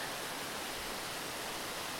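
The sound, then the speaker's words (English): Steady, unbroken rush of falling water, a dense hiss spread across the whole range with no pauses or changes, fairly soft and heard on its own without any voices. “This is not a normal waterfall.”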